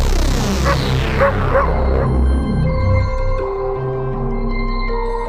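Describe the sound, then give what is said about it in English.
Several dogs bark and yip loudly in a dense, overlapping burst, trailing off into higher whining tones toward the end. No one speaks. “Shall we unleash the dogs?”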